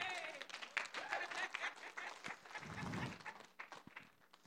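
An audience breaks into applause, giving God a hand clap, a dense, steady patter of many hands clapping at once, with a few cheers and voices mixed in before it begins to thin out.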